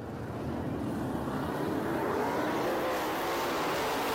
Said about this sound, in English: The second highlight is right here. This is when they finally blitz cleaned up the track, got all their wrecked cars off, and now it's the restart of the race, and now we're fourth.